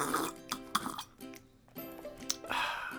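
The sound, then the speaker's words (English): Someone noisily slurps and gulps a drink of Deer Park water in several wet bursts, with throaty, voiced swallowing sounds between sips and a sharp click near the middle. “I'll drink your water like this.”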